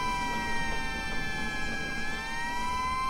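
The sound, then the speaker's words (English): A big red fire engine's siren wails steadily, its tone sliding slightly as the vehicle speeds away, with a low engine rumble underneath and no voices. “Sandy watched as the big red fire engine sped away into the distance.”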